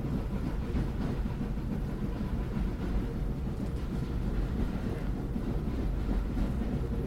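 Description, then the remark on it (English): A train rumbles steadily along the tracks, a continuous low, heavy roar with faint rhythmic clatter, sustained throughout with no voices. “Well, Sheriff Potter's facing his high noon as the train rolls on.”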